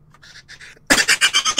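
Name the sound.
cough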